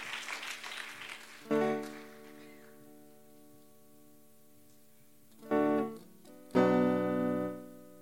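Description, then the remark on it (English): An audience stands and claps as a clap offering to God at the start of a church service, the dense clapping thinning out as loud sustained organ-like chords come in and swell twice more near the end. “So let's give God a good clap offering as we all stand.”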